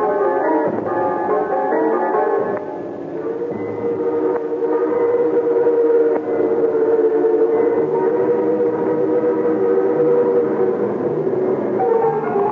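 A train roars along the rails in a steady, continuous rumble, with a sustained whistle-like tone rising over the noise and holding for several seconds. No one speaks.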